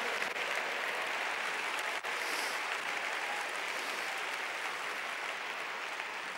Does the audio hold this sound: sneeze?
no